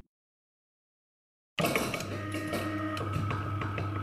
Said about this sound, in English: Rusting laboratory doors retracted like an ancient vault being forced open.